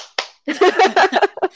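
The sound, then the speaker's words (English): A single sharp hand clap rings out, followed right after by a stretch of someone's voice, loud and voiced with a few short bursts. “Clap.”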